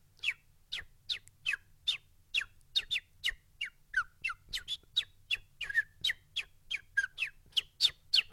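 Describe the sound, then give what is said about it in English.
A voice imitates sparrows with a quick, steady run of about twenty sharp, high chirps, fairly loud, over a faint low hum with no talking. “So, yeah, so some of the birds, things like sort of sparrows where you've got like”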